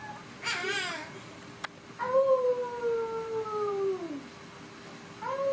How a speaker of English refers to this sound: That's a kid. The beginning was the dog, but the dog's coming. That is so cute. It thinks it's a cat. Look how cute. No, a wolf, because it's a Siberian husky. So it's howling. A tiny husky